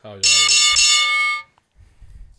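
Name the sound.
bell sound effect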